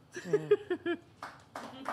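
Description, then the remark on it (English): Voices are followed by a short burst of scattered hand clapping from a few people, loud, fading out within a couple of seconds, at the end of a show after a kazoo game. “Don't clap for this.”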